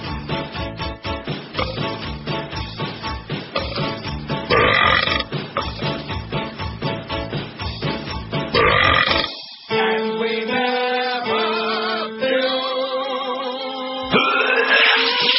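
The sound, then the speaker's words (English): Loud, rhythmic burps repeat in quick succession over a musical backing, followed by longer, drawn-out belching tones that rise and fall like notes in a tune. “We like to burp a lot.”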